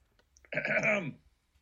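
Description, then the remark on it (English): A single throat clearing, one rough, gravelly burst lasting about half a second before it cuts off, with no talking around it. “No, I'm clearing my throat.”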